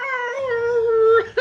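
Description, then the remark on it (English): A voice imitates a whale call with one long, moaning, howl-like tone that slowly sinks in pitch, then breaks into a couple of short, rough bursts. It is fairly loud. “Oh, I meant to write him do whale noises.”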